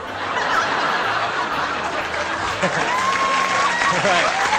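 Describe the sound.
A steady burst of crowd applause and cheering used as an applause break sound effect, loud and continuous throughout, with scattered laughter, voices and a few rising whistles mixed into the clapping.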